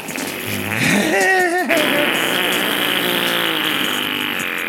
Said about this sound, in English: Farts are funny.